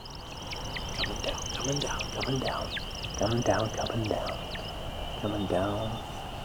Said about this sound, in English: And then at the apex of his flight, he starts to chirp. Oh, he's coming down. Can I hear the chirping? That means he's coming back down. It's almost like he's tumbling down in a sort of controlled freefall.